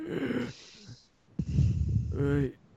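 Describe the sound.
A person vocally imitates a captain wheezing with a big gasp after a cough: a strained, raspy intake of breath that swells into a loud, noisy rush of air, then trails off into a voiced groan.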